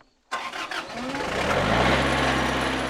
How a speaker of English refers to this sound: Before I leave, she starts up the tractor, another skill she's learned on the job. We'll see if I can get it to start in one go. It's a little bit temperamental.